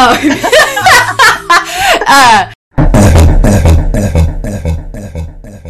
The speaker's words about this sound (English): Hold on, I have to burp. I'm drinking kombucha right now, so like, excuse me, everyone.